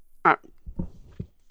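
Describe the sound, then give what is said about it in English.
Soft chewing of green Haribo gummy bears: a few squishy, low mouth thuds at an uneven pace, preceded by a brief vocal sound near the start. “Listen to us chew.”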